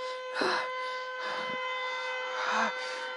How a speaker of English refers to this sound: Just the sirens going. Looks like they blew up the siren. Oh, there's another siren.